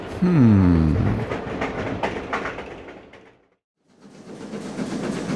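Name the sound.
train running on rails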